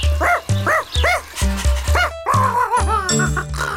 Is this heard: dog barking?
yes